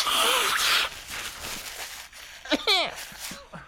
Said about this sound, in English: Hold on, let me blow my nose on mic then. Okay.